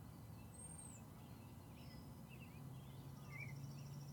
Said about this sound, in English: If you listen carefully, you can hear that it is a beautiful day. You can hear the birds. There was a pheasant out in the background there. A plane went by overhead.